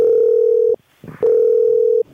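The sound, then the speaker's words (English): A phone line's ringing tone as an outgoing call is dialed: two long, steady electronic beeps separated by a short pause with a faint clatter in between, loud, with no one speaking. “We're calling. Right. It's dialing.”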